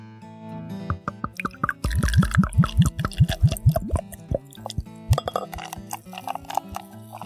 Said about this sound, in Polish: Fuller's nalewa się z troszeczkę niższą pianą, która, no, sprawia wrażenie troszkę mniej trwałej, no ale zobaczymy za kilka chwil, jak to będzie.